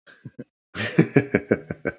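cough

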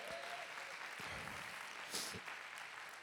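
audience clapping

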